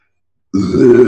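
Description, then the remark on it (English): A voice imitates a loud, drawn-out belch, a single rough, guttural burp starting abruptly after a brief silence and sustained with gravelly low rasp until the end. “Belches and puts it down and just gives you that same fierce look.”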